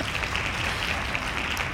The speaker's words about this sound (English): and bring back the hand claps one more time.